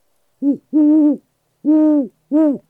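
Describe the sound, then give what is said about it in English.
A person imitates a great horned owl at a line of pine trees, giving four clear hooting calls in a short-long, long-short rhythm, with silence between them and no other sounds. “The sound of a great horned owl.”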